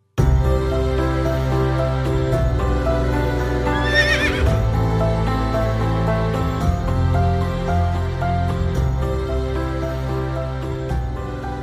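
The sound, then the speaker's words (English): A single shrill horse whinny rises and falls partway through, layered over steady, full instrumental music that plays loudly from start to finish. “So we're making a movie called Love in the Time of Horses.”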